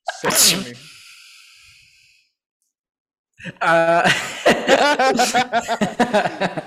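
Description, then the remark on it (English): A single sharp, loud sneeze bursts out and rings off briefly, followed by a pause of silence before voices resume talking. “Bless you, my dude.”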